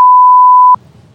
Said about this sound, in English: She beeped that out.